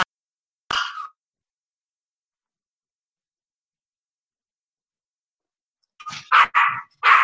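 A dog barks once, then after a long silent stretch lets out a quick series of three or four loud barks in a row as someone arrives home.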